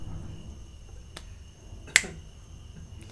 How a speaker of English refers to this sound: You gotta still work on that. The clap and the snap.